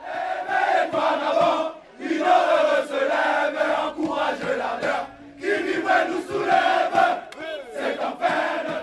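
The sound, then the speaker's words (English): A large crowd cheers and chants together outdoors, loud and sustained, with rising shouts and rhythmic surges of many voices celebrating in a street. “You've also had footage of celebrating crowds.”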